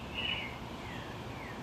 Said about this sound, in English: And it allowed me to be here with you in this moment with these amazing birds who are just making all kinds of rackets this morning on outside of my home.